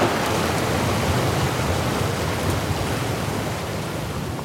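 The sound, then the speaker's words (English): A steady, dense roar of heavy typhoon rain pours down on an island without letup, a loud wash of noise with no voices and no distinct thunderclaps standing out. “A typhoon hit the island!”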